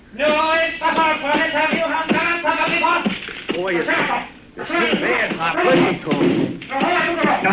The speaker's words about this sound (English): You watch the door. I'll hack away at the plaster.